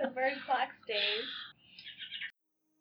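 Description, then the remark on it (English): A bird clock chirps out recorded birdsong: a few warbling, tuneful calls in quick succession, clear, then stopping abruptly into silence. “The bird clock is staying though.”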